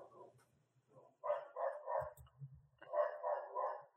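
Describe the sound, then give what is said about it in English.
Dogs bark in quick, overlapping bursts, with a loud flurry at the start and another near the end. A low thudding rumble sits underneath in the middle. The barking is in-game video game ambience on subway tracks in an abandoned section. “A lot of dogs in these subway tracks.”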